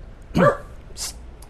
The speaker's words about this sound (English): Who's that barking? Is that you, Bruno? Oh, he's right under me. He's right beside me, and I was looking at the dogs outside by the gate.